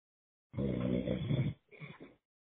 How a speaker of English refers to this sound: Somebody's snoring. Yeah, I hear it.